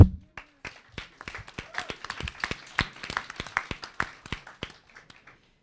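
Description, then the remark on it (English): A short round of applause from a small group welcoming a speaker at a talk: scattered, uneven hand claps build into a brief flurry, then thin out and taper off over about five seconds. “Round of applause.”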